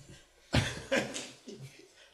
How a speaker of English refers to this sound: And cough.